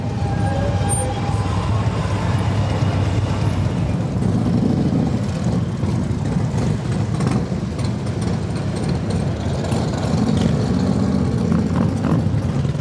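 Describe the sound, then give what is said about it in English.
A dense, continuous roar of many motorcycle engines rumbling and revving at once at the Sturgis motorcycle rally in the United States, loud, with a busy outdoor crowd ambience and no clear talking throughout. “Sturgis is the largest motorcycle rally in the United States.”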